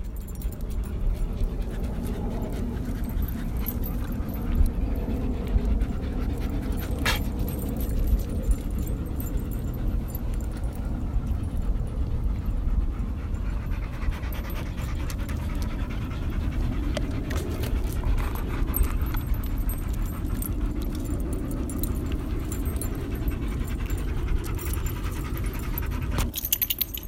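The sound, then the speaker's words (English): A pack of nine happy, tired dogs panting steadily, their overlapping breaths forming a dense, continuous huffing texture, with a few faint metallic jingles now and then and no talking. “But before we do, in case you've never heard the sound of nine dogs who are happy and tired, here they are.”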